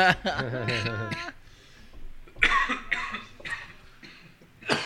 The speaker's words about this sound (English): Okay, I'm coughing. Coughing now. Sweating. I'm like, big ass smoke.